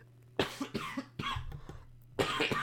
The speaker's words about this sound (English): You really got to learn how to mute your mic when you're going to cough. I was literally clicking it, and it didn't click, so I'm sorry about that.